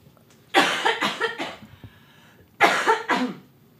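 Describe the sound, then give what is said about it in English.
Two bursts of harsh, hacking coughs after smoking from a bong, each a quick series of three or four rough barks, separated by a short pause, fairly loud with no talking. “Can you hand me the bong, please? Mm-hmm. I have to cough anyway.”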